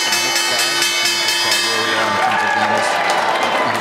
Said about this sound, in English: I guess the opening bell here from the stock exchange.